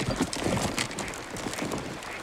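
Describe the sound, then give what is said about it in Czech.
Hooves clip-clop in a steady, uneven rhythm as a horse-drawn carriage rolls in, with a faint mechanical rattle and a constant background wash throughout. “Slyšíme, jak první přijíždí kočár s koňmi.”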